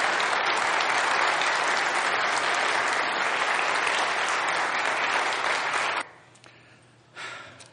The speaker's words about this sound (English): So how about a round of applause for a great American hero, Rod Kirschenstein.